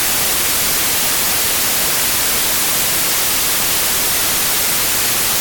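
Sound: radio static noise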